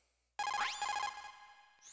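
A phone call ringing tone sounds abruptly after a brief silence, a bright electronic trill with a rising sweep and repeated pulsing notes, loud, fading out near the end.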